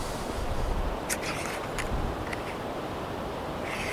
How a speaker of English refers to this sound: It's still pretty windy up here